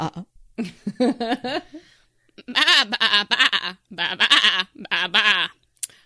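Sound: sheep bleating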